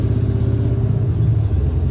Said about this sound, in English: And if you're very fortunate to have a seat, traffic is at its, locally, it is packed. There's something going on. Maybe these women called their husbands to come pick them up. And now you have this congested streets that normally are not that busy.